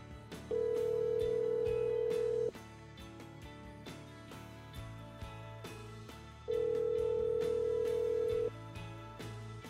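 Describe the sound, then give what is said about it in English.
Two long, steady electronic tones from an automatic voicemail system over a phone line, each about two seconds, sound several seconds apart over a muffled background of low hum and scattered clicks. No one speaks. “At the tone, please record your message.”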